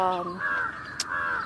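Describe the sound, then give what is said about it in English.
Crows caw in a few harsh, drawn-out calls, moderately loud, with a brief sharp click partway through. “the crows are feeling left out.”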